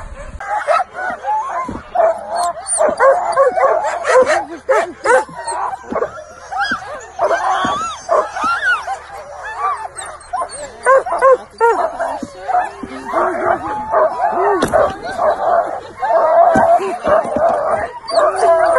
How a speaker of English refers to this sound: Wow, this is so cool. We're being pulled on the sled by the dog.